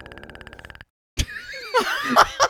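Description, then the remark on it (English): A rapid, even train of throat clicks runs for under a second, then after a short silence a loud, gurgling intestinal burp rumbles and warbles. “I made my throat clicks and he did his intestinal burp.”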